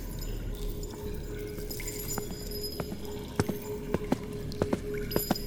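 Slow, hesitant footsteps approach a doorway threshold, the hard taps spaced irregularly and growing louder and more frequent toward the end, over a steady low background hum.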